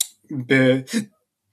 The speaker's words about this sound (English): Friggin' hiccups. Excuse me.